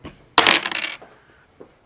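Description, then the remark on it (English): Dice being rolled: a sudden burst of bright clattering as the dice tumble and rattle across a surface for about half a second, followed by a faint final click. “No, I did not wait for the dice to actually become visible.”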